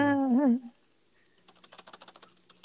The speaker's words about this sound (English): You were typing very aggressively. Yeah, I'm spacing things out because Latin is whack.